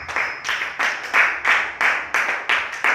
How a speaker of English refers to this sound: Okay, what was that? Oh, are you clapping your hands?